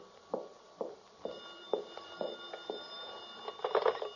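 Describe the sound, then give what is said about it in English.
A telephone rings in a steady series of bright, metallic pulses, fairly quiet, ending in a denser burst of ringing. No one speaks. “The phone. No, I'm not going to answer it.”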